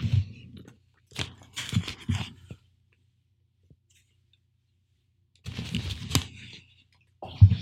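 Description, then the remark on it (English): Wet gulping of a drink of water, several swallows in short bursts with a quiet pause in the middle, then a final gulp. No one speaks. “All right, let me get a gulp of water before I dive into this one.”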